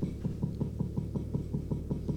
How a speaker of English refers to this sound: Well, I was gonna try and defend myself, but I think someone's knocking at the closet door. Oh, that's weird.